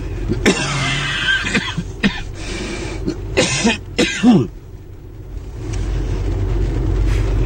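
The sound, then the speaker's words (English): Several heavy, hacking coughs from a man sick with COVID burst out in quick succession, loud, with a throat-clearing rasp among them, over a steady low rumble that continues after the coughing stops. “The coughing is just terrible at the beginning of this, so apologies about that, but here we go.”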